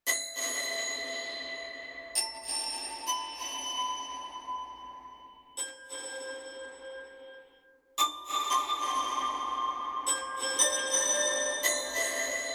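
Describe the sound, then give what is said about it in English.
Bright, bell-like synth notes, random notes in the key of C, strike one after another in a slow melody, each tone ringing on and smeared into a long washed-out tail with echoing repeats from a delay placed after the reverb; no voices. “And contrary to quote unquote production rules, I put the delay after the reverb so it would kind of delay the reverb.”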